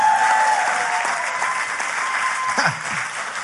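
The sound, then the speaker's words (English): An audience applauds steadily, giving God a hand of praise, dense overlapping clapping for the full stretch, with a faint voice or two rising briefly beneath it near the end. “Let's give God a hand of praise. There we go.”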